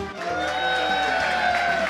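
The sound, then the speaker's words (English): Steady audience applause fills the moment, a dense, continuous patter of clapping mixed with some sustained tonal sound, fairly loud and even for two seconds. “Oh, I didn't think you were going to get that kind of applause.”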